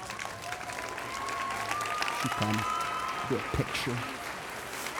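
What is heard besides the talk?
audience applause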